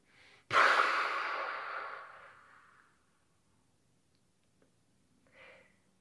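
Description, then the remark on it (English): A single long, breathy exhale blown out loudly during a breathing exercise, pushing the air out of the belly and trailing off over about two seconds, followed by quiet and a faint short breath near the end. “Try to blow all of that air in your belly out when you do it.”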